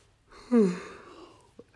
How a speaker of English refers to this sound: And then, I'm sorry, I'm yawning.